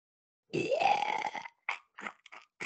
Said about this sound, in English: Oh, famous chewing.